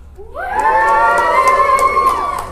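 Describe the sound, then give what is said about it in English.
A live audience, asked to cheer if they're getting Sun, breaks into loud cheering and whooping, voices rising together in a sustained, high-pitched swell that holds steady for a couple of seconds with scattered shouts on top. “So cheer if you're getting Sun.”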